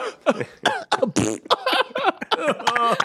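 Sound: imitated coughing fit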